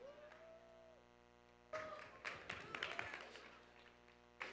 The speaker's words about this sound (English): I know, I like those three claps.